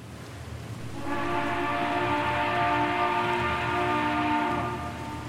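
A passenger ship's warning whistle, sounding as the ship is almost ready to sail, gives one long, steady, low blast for about three and a half seconds, rich in harmonics, over a constant rushing, rumbling background noise.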